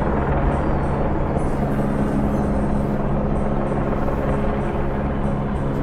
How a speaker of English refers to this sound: What the hell is that sound? Oh. No, that's a jet plane. What the hell? There's some sort of helicopter up there.